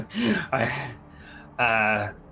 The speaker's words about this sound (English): I'm, like, still panting.